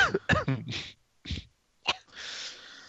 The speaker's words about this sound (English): I, too, have been sick, if you're wondering why I'm coughing.